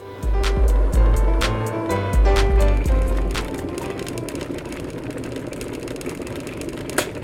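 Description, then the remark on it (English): An electric kettle being boiled again: a deep, uneven rumble with rapid clicking for the first few seconds, settling into a steady rushing hiss, with one sharp click near the end. No talking. “Just going to boil this kettle again, annoying me.”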